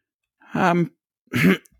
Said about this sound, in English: as Nyx coughs out some more blood.